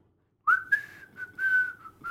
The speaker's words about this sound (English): The only musical part I liked was the whistle.